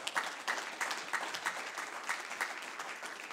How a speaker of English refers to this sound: Oh, clap your hands unto the Lord, all you.